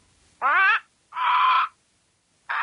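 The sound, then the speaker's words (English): Harsh, crow-like caws from a bird, loud, sounding three times in a slow, evenly spaced rhythm with short silences between them. The third is cut off at the end. “So we will continue on with a few squawks.”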